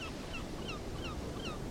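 Ocean waves wash in a steady, continuous roar, with short, high bird chirps repeating above the surf. No one speaks.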